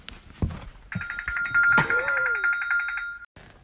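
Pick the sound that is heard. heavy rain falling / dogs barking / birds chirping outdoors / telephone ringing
telephone ringing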